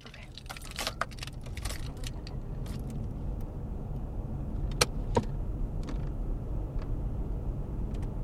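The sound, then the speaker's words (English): Inside a car with a low steady rumble, a flurry of jangling keys and small mechanical clicks as people get into the car, then two sharp latch-like clicks. No one speaks. “So we've gotten in the car.”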